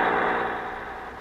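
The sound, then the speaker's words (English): An express truck's engine drones steadily as it turns a corner into a street in Beverly Hills, a broad rushing rumble that slowly eases off over about a second. No one speaks. “Uh-oh, there's an express truck turning the corner into guess-whose street.”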